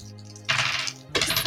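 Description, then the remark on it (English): Dice clatter and tumble across a hard tabletop in two quick bright rattling bursts, fairly loud, with a faint low hum beneath; players rolling the dice for sanity in a game. “Terrifying, and all of you need to roll sanity.”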